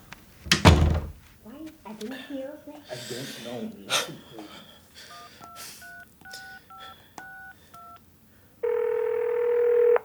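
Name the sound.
telephone being dialed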